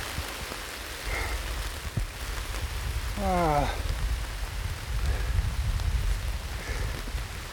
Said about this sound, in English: Oh my God, it's absolutely pouring.